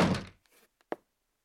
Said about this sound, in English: I'm just going to close the door here.